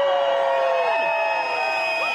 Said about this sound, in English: Cheers from around 2,000 people who travelled all across the country to join the crowd.